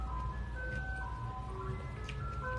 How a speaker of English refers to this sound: The truck come by again? I can't with this truck.